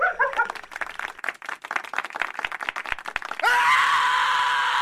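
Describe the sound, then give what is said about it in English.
Rapid, uneven bursts of noise like scattered clapping give way to a sudden, loud, sustained scream that holds steady to the end. “I hate it when they scream.”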